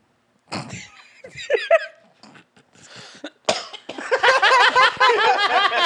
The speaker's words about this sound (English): coughing with the laugh is always hilarious.